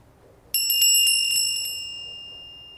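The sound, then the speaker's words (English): A small hand bell rings out clearly with several quick strikes in a burst, then its bright metallic tone lingers and slowly decays into quiet. No one speaks. “I love using a bell. I love the bell. We use the bell at the beginning of our episodes before mm-hmm.”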